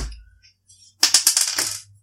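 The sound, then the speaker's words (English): Two six-sided dice clatter and tumble across a table during a tabletop game in a quick burst of rapid rattling that settles after about a second, preceded by a few faint light taps. No one speaks. “So now my 2d6.”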